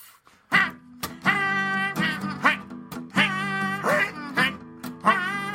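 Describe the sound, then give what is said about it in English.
A rapid series of loud, nasal geese honks overlapping one another, insistent, with barely a pause between calls over several seconds. “Check out that goosey sound going.”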